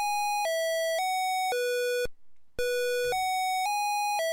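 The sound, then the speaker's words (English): A synthesized bell in the video game Kangaroo, rung by jumping up to it, chimes the Westminster Quarters: two clear four-note phrases separated by a brief pause, bright and sustained, heard alone with no talking. “Once you ring the bell, it sounds the Westminster Quarters song.”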